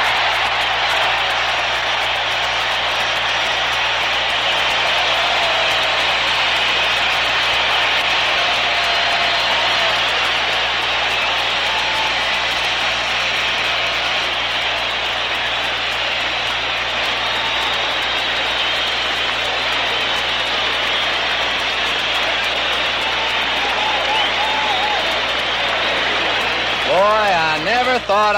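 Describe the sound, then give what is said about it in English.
A baseball crowd at the Coliseum roars loudly and steadily as Sandy Koufax is one strike away from tying Bob Feller's strikeout record, a dense unbroken wash of cheering. A few rising, wavering yells stand out near the end. “This crowd just ready to lift the Coliseum.”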